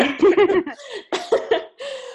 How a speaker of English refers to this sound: Sorry, I need to clear my throat.